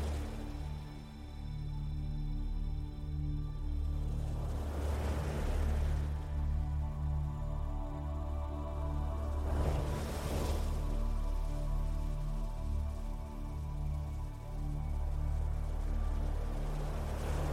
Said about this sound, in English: For now, just continue to walk along the beach and let the sound of the ocean wash over you, calming your mind and body.